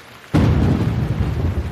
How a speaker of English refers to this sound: A long silence, where all you could hear was the pounding rain from the storm outside.